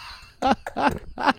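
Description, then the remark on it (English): An Aussiedoodle puppy giving kisses grumbles in three short, throaty bursts, each a low groaning rumble with a brief pause between, fairly loud and with no talking over it. “My Aussie doodle puppy won't leave me alone with kisses.”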